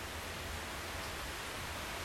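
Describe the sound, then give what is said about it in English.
Heavy rain pours down in a steady, dense hiss that fills the whole clip at a constant, moderate level, with no voices or other sounds breaking through. “Getting heavy. Here, it just got louder. Oh, that's the rain.”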